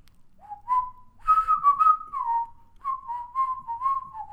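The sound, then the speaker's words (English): Someone whistles a short tune, the clear tones sliding between sustained notes and quick phrases, wavering slightly in pitch with a brief pause midway and no talking. “I probably don't whistle that one very good either.”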